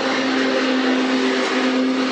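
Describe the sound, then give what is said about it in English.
A lawnmower engine drones steadily and loudly for a couple of seconds, a buzzy, constant hum with a low tonal core and no change in pitch. No voices are heard. “The lawnmower is chasing us.”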